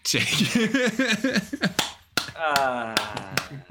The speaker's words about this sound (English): Oh, sorry, I was late to the clapping.